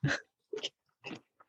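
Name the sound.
crunching cereal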